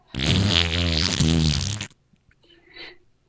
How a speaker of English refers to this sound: You actually farted on the Zoom and everybody started to laugh at you, correct?